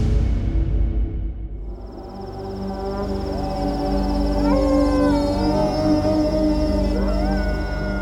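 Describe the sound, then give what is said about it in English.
Several wolves, jackals and desert dogs howl at night among desert sand dunes in long, rising and falling wails over a steady low rumble and a thin high whine, the voices overlapping. “Wolves and jackals and desert dogs, they would move through the sand dunes at night, feet as light as a whisper.”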